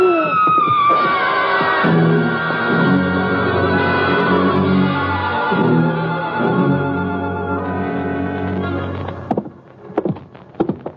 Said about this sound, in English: That was a woman screaming, Louie.